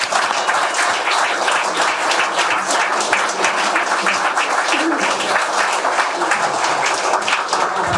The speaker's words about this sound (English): Just a warm round of applause.